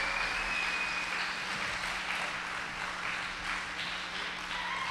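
A crowd claps and cheers for the children continuously, a dense, steady wash of applause at full volume for the whole stretch, with a faint high whistle rising briefly early on and no clear speech.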